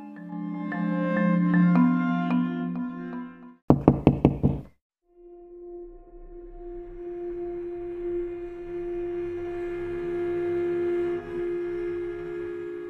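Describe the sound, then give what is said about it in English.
A quick burst of about five loud, sharp knocks on a door cuts through a tonal musical passage, followed by a brief silence and then a low, sustained droning tone. “Suddenly, there was a knocking at the door.”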